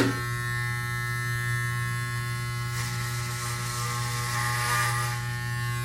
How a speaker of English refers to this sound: And I got these new clippers. going down, mullet. Maybe. Oh, yeah. Now that sounds like cutting, right?